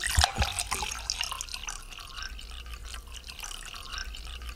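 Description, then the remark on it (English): Dirty water collected for a Bible school demonstration pours in a steady trickle, with scattered drips splashing throughout and a brief louder splash near the start; no one speaks. “After they've collected all the water, and this is part of a Bible school thing we're doing, but after they collect the water and they've got this dirty water, this is how it turns out.”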